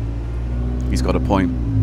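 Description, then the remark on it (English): A steady low engine rumble fills the inside of a moving bus near East Finchley, heading towards Golders Green, droning evenly throughout, while a voice briefly speaks over it partway through. “The bus has not got a working display of all the stations we're going through.”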